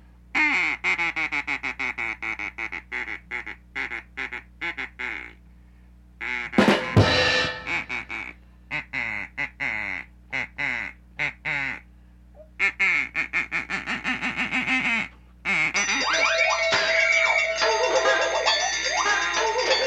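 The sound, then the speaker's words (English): A duck-quacking sound effect plays loudly from a phone, a long run of rapid, repeated quacks in bursts with brief gaps, ending in a denser, noisier stretch. No one speaks. “Oh, it's my phone effect.”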